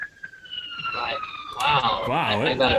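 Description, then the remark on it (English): A police siren wails as it passes by a house, its high steady tone swelling louder, with the pitch rising and falling in quick sweeps toward the end. “I like that they just turned on the siren as they passed my house.”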